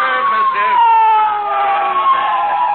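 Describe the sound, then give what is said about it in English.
A police motorcycle siren wails loudly, its steady tone sliding slowly downward as it winds down over a few seconds while the officer parks the motorcycle right in front of the speakers, with no other sounds around it. “He means business, too, McGee. He means business. He's parking his motorcycle right in front of us.”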